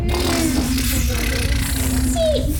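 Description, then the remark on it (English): Voices imitate the wind of a sandstorm with a steady, low, continuous hum, joined by a few brief higher whistling tones over a breathy rushing noise that stays at an even level. “And then we get the hum of the wind.”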